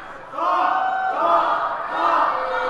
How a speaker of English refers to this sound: They're booing you.